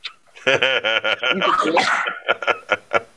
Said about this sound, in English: I can't. The small dog is biting us. I would not sit in the chair with him.